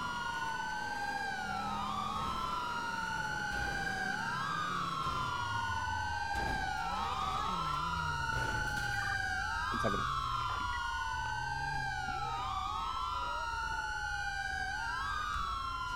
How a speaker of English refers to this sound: I had to respawn my vehicle because my vehicle got stuck in the siren mode.